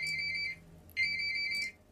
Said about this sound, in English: I've got a phone going off somewhere, so excuse that.